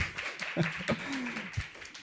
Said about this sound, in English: Let's give Seth a round of applause for using the word forehawks.